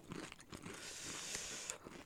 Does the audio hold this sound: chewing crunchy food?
yes